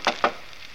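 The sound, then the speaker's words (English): Two sharp knocks on a wooden shop door, a quick pair of hard raps in fairly even rhythm, followed by quiet with no voices. “I'm afraid my etiquette is a bit faulty lately, so just to please you, I will knock on the door.”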